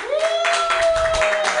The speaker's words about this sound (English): So we'll do it by clapping. Everybody, if you're going to clap louder for the person that you want to have them be the winner.